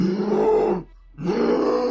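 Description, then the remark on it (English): A person imitates a bear's roar with two long, gravelly growls, each loud and sustained, split by a brief silence in the middle. “So I'm gonna charge one of the big guys, and, yeah, basically, as I'm doing so, I'm roaring, you know, as a bear.”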